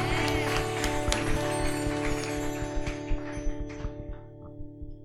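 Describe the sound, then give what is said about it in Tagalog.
A crowd claps loudly, a dense wash of clapping with sharper individual claps poking through, thinning out toward the end over a steady, sustained musical tone. “sa pangang malakas na palakpak para sa mga nagmamahal sa Panginoon.”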